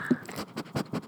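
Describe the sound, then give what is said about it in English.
A golden retriever named Murphy pants and sniffs in quick, breathy bursts, a rapid run of soft, noisy huffs with no voices, snuffling right at the microphone. “with Murphy, the golden retriever. He's a little bit of a heavy breather.”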